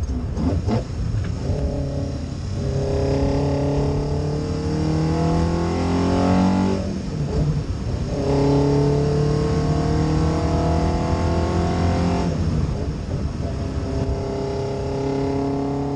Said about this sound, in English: Here, I'm gonna play a little bit of the engine noise of you driving through the gears for people to check it out.